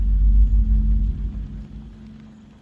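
Rain falls under a deep, heavy rumble that starts loud and gradually fades away over a couple of seconds, with no voices.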